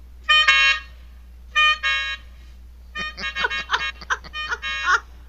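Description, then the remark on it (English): A reedy melodica, played to get people to move out of the way, blares two short sustained honks, then a fast run of choppy, stabbing notes, mimicking the insistent beep beep of a cart. It plays loud, with no voices. “I look down at my hand and I have my melodica. So I take it out and I start going.”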